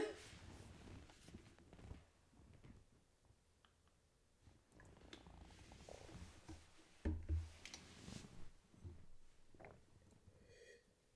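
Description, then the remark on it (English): Soft, irregular sipping and swallowing noises as someone drinks water from a glass, with quiet slurps, gulps and breathy mouth sounds spread over several seconds and no talking. “I'm sorry, I'm taking like a sip of water with a glass of wine, so that's why you're hearing that.”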